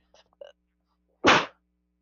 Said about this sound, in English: Hold on, I gotta sneeze.